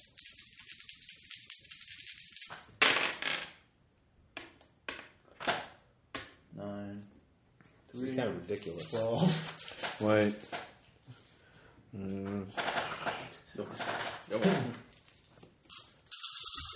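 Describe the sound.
A burst of rattling clatter as a handful of six-sided dice is shaken and tumbles across a table, rolled for shotgun pellet damage in a game, followed by scattered light clicks while people talk and count the results aloud.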